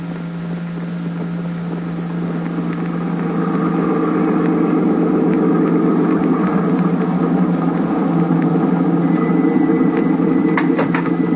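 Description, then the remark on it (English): A car engine hums steadily, its low drone growing louder after a few seconds as if revving up or pulling away, with no voices over it. “I've got my car right downstairs.”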